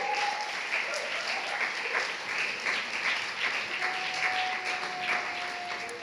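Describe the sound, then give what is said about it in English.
A crowd claps steadily to welcome two invited guests, a dense, even wash of many hands with no pauses, staying loud from start to finish, with a faint whistle-like tone now and then over the applause. “Why don't we give them a big clap?”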